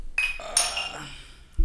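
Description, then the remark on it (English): Glasses of Crown Royal clink together twice in quick succession in a toast, bright, their ringing tones fading out slowly before a dull low thump at the end. “Let's have a toast. Cheers, guys.”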